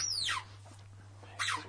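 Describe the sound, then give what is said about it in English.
A dog plays with a squeaky toy, which gives two sharp, high squeals that slide downward, about a second apart, over a low steady hum, with no talking. “It's my dog playing in the background. I'm not sitting there playing with a dog toy.”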